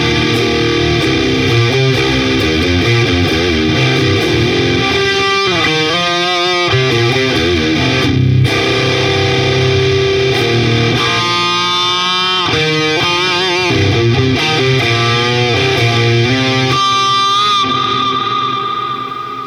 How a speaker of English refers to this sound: Yes, that is two fuzzes and a distortion circuit running parallel together, and it just sounds so damn good.